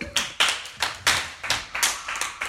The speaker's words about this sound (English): That's very good. Clap for her. That's good.